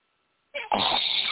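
After a moment of silence, a person snores: a short rough snort followed by a loud, sustained raspy breath that carries on to the end, with no talking.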